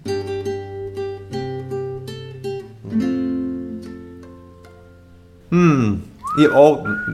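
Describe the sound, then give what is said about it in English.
A guitar picks out a steady run of chords for several seconds, then a voice cuts in near the end alongside a short, bright whistled phrase. “Alright, take your guitar and play the song, and I'll guess. And I'll whistle also.”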